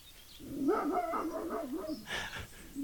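A dog barks close by in a run of wavering, drawn-out yelps, followed by a sharper, harsher bark near the end, with no one talking.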